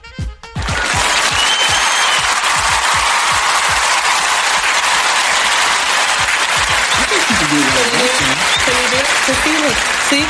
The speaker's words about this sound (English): There's a drum roll on there, but I know that if you hit that, that'll give you applause.